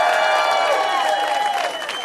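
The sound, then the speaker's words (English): A crowd applauds and cheers loudly as a couple is welcomed to the stage, dense clapping blended with sustained high whoops and shouts, holding steady for about two seconds before easing slightly at the end. “Big round of applause for them, if you would, please.”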